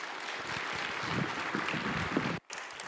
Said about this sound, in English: So I'd like to invite you to give a warm round of applause and welcome to our brother, Hananya Naftali.